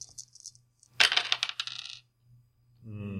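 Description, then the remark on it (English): A few light clicks, then a burst of two purple dice, rolled for an average check in a tabletop game, clattering and tumbling across a hard surface for about a second before settling; a voice starts speaking right after. “It'll be an average check, so only 2 purple dice.”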